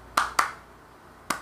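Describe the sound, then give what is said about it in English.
Three sharp hand claps in a short rhythm: two quick ones close together, a pause, then a single final clap, crisp, with no talking; a clap pattern audiences in Japan used instead of cheering, which they were not allowed to do. “Okada had created this thing that they can do, like a clap.”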